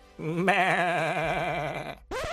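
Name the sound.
sheep bleating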